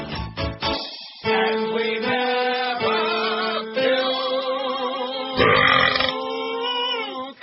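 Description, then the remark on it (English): A couple of quick guttural bursts, then one long, loud, rumbling burp drawn out for several seconds, with no talking. “We like to burp a lot.”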